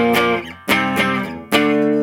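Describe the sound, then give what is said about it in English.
Electric guitar with two humbuckers, both on, played through fuzz: three thick, sustained distorted chords struck about a second apart, each ringing with a buzzy, harmonically dense tone before the next hit. No voices. “I mean, you get a broad range of tones, and I've been noticing that it really holds up under... under some fuzz.”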